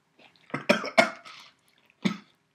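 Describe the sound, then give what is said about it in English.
A quick run of harsh, choking coughs from a very crunchy cookie lodged in the throat, about four bursts close together, followed by a pause and one last cough. The sputtering sounds strained, with no talking. “Very lodged in my throat.”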